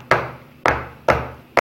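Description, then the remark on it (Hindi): Four sharp, hollow taps of a cake mold filled with batter, tapped lightly against a counter to settle the batter, evenly spaced about half a second apart, fairly loud, with no talking. “हल्का सा टैप करेंगे।”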